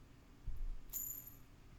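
A dice ring is spun to roll a dexterity check, giving a soft thud, then a bright, high metallic ringing whir that lingers for about half a second and fades. It is quiet, with no talking.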